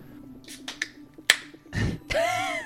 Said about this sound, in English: As you open the door with a crack and a little squeak